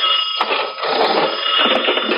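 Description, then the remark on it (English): A telephone in a store rings loudly and continuously with a harsh, clattering bell tone, with no voices over it. “I'm expecting a call. I'll answer. Go on, then. I'll answer before they hang up.”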